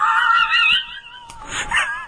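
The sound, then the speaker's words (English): A person imitates a dog, with a drawn-out whining, yelping cry followed by a rougher, barking burst, loud with no other talk. “I did notice, too, like, I didn't even see Ace the Bat Hound, but I noticed Bruce Timm was credited as doing the voice of the dog.”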